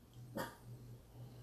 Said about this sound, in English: And there goes my dog Bear.